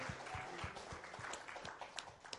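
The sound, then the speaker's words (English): An audience applauds the director of TLC Kids Care with a steady, dense patter of many hands clapping at once, an irregular crackle of overlapping claps that holds at an even, moderate loudness throughout, with no talking. “And yes, give her applause.”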